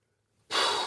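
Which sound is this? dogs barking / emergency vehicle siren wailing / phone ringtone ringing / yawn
yawn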